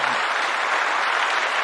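A crowd applauds with steady, dense hand clapping that stays fairly loud and even throughout, with no pauses and no voices standing out.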